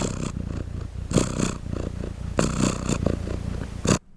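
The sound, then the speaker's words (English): A cat purrs in a steady, continuous rumble, with louder breathy pulses recurring roughly every second or so as it breathes in and out; no voices are heard. “Yes, it's a purring cat.”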